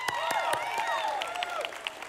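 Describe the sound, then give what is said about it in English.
A crowd claps steadily to show they have a real Christmas tree at home, the overlapping hand claps forming a dense patter, with some cheering and whooping voices rising over the applause. “Let me hear you if you got a real tree. You can clap.”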